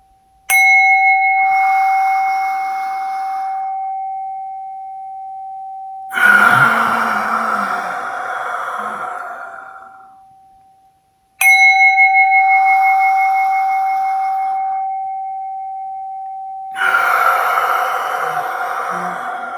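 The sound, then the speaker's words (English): A singing bowl is struck twice about eleven seconds apart during a guided breathing exercise, each strike ringing out in a long, steady shimmering tone, with slow, audible breaths exhaled over the fading ring. “So got my sound bell today, so bowl. So you'll have a little sound with us today.”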